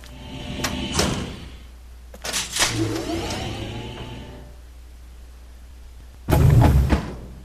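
A mechanical sliding door opens with a short hiss, then a longer whirring glide, followed after a pause by a loud, heavy thud. No one speaks.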